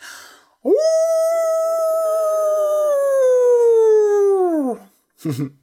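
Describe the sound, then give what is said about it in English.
A person imitates a wolf howl: one long, sustained wavering cry that rises sharply, holds steady for about four seconds, then falls away, followed by a brief soft vocal sound. “Actually, I am very good at making wolf howls. Listen.”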